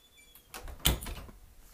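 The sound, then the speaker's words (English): A door swings shut with a short rustle and a solid thump, followed by a faint rattle as it settles; moderately loud, with no talking. “Had to close the door.”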